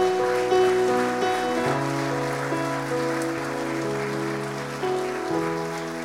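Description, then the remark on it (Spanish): A church audience applauds for Christ in a steady, dense patter of clapping while sustained keyboard chords hold and shift underneath; no one speaks. “¿Cuántos le pueden dar un aplauso a ese Cristo?”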